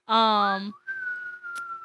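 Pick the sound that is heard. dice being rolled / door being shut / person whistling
person whistling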